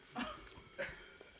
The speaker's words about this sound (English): You're lucky that was just a cough.